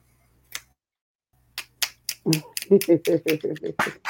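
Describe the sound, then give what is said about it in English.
Finger snaps from an audience after a poem, a few scattered at first, then a quicker, steadier run of crisp snaps with voices murmuring or reacting underneath. “I never know whether to clap or snap because it's a poem.”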